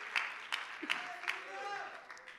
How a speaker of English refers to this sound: Come on and clap your hands and give the Lord some praise today.